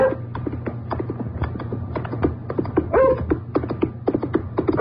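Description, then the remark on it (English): A dog gives a short bark or yelp partway through, set against a steady rush of rapid clicking and clattering as a man on horseback gallops furiously along a hard road across a moor on a still January afternoon. No one speaks. “First the dog, and then a man on horseback, galloping furiously.”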